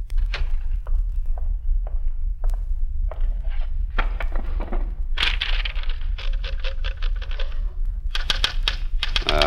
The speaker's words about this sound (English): I found what I was looking for, a portable typewriter on the desk, and that wasn't all.